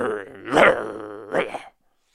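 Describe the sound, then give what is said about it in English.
A pride of lions growls and snarls in a ravine in the morning while feeding on a kudu they have killed, a low rumbling drone broken by two louder, rasping outbursts before it abruptly stops. “In a ravine, I hear the lions growling. They are the sounds of feeding.”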